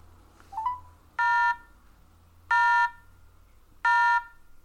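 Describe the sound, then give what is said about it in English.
A short telephone dialing blip, then three buzzy busy-signal tones repeating at an even, slow pace over faint line hiss, with no one speaking; the called line is busy because the person is already on the phone. “That is busy. He's on the phone.”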